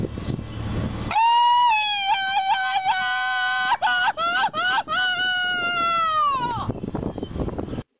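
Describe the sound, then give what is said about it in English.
A Mexican yell sound effect, played again on request by the show's audio engineer: one long, loud, high-pitched cry lasting several seconds, warbling and trilling in the middle before it slides downward and stops, with brief noisy bursts before and after. “As a matter of fact, audio engineer JP, my man JP, can I get that Mexican yell one more time, man?”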